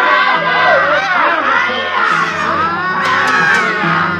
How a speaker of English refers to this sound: Men and women, heaven knows what they were before, teachers, mothers, anything, screaming and running up that hill.